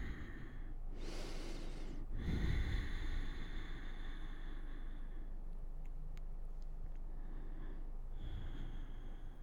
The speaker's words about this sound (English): Take a couple breaths here. Deep breathing.